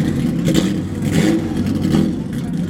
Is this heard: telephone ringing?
no